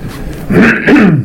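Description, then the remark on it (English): A person clears their throat in two quick, rough, voiced bursts, the second rising then falling in pitch, fairly loud over a low background hum. “Isn't there supposed to be an off button whenever I clear my throat?”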